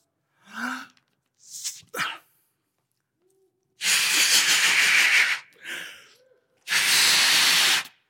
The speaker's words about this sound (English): So, I have been filling up these balloons a little bit throughout the sermon. And it's amazing. You're all like, what's going to happen? Nothing. It's a balloon. Very slowly, I've been filling this up.